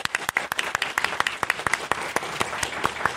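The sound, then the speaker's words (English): An audience breaks into sustained applause for a guest of BBC Studios TalentWorks, many hands clapping in a dense, steady patter with sharp individual claps standing out, fairly loud and continuing throughout without any voices. “But let's just give a massive round of applause to our guest”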